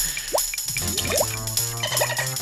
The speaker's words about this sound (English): Funky synth right there. Played by the coral. From the clams.